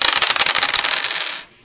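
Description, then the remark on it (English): Five dice are rolled, rattling and clattering together in a rapid burst of bright clicking, lasting just over a second before settling into quiet. “Now you're at 5 dice. All right. There, you can check.”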